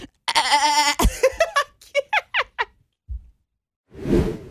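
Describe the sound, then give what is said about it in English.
A loud, wavering goat bleat rings out, followed by a quick run of short, squeaky bleating calls and a brief breathy burst at the end, with no talking. “Give him the goat.”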